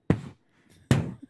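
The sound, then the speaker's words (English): Two muffled, low, thumpy bursts about a second apart, a belch brought on by tonic water and stifled behind a hand-covered microphone, each loud at first and quickly dying away, with no talking. “I just covered the mic to belch, yes.”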